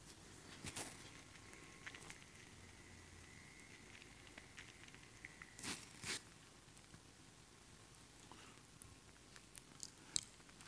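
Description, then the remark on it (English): Quiet chewing of communion bread, with a few soft crunchy bites and mouth sounds scattered irregularly over a faint background hiss; no one speaks. “Sorry, all my chewing is on the”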